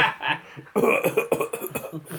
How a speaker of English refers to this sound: You start coughing because of all the heavy smoking you've been doing recently.